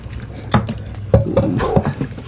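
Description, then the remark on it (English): Buffalo Trace bourbon is poured for a shot, with a short run of wet glugs and sharp glassy clinks over a low background hum. No one speaks. “Here goes the Buffalo Trace.”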